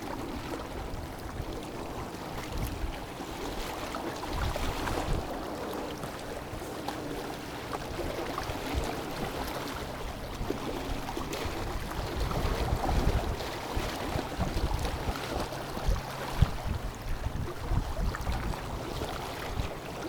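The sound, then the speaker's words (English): Freshwater waves of a large reservoir in southern Scotland lap and splash against rocks in a steady, uneven rhythm in October, mixed with a continuous rush of cold wind buffeting the microphone; no one speaks. “But just listen to that, the sound of the fresh water waves and the cold wind together.”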